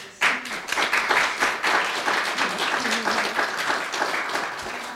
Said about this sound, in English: Je voudrais vous remercier beaucoup, les gens, de vous être déplacés dans la salle ici à la Bibliothèque municipale de Kingston. Vous pouvez vous offrir une bonne main d'applaudissements. Oui, merci.